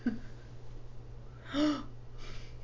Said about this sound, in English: I removed my hat. That was why the gasp. The gasp.